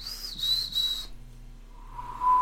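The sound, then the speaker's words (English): A person whistles a high, steady note for about a second, then after a short pause whistles a much lower tone that swells louder at the end. No talking. “How are you in whistling?”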